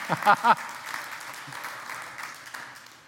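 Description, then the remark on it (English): A crowd applauds and cheers, with a few loud whoops at the start that give way to steady clapping gradually fading over a few seconds. “You can cheer for that.”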